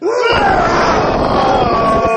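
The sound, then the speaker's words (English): Several voices, called demons, scream and wail together in agony in a loud, sustained chorus of anguished cries, densely packed, with no clear words, lasting the full two seconds without a break. “but your humans can hear your screams of agony. Scream in agony, demons.”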